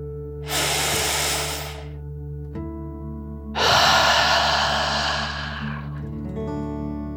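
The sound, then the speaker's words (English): Two airy breaths with no talking: a deep inhale through the nose lasting over a second, a brief pause, then a longer, louder, breathy exhale through the mouth, all over a soft, steady musical background. “Breathe in through your nose, filling up your lungs, and then out through your mouth, imagining you are breathing fire like a dragon.”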